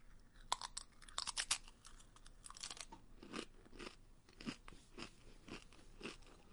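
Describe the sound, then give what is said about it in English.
Loud crunching of a spicy tortilla chip eaten for the One Chip Challenge: a quick flurry of sharp bites at first, then slower, steady chewing crunches repeating about every half second, with no talking. “I just got to chew it quick and get it down, I guess.”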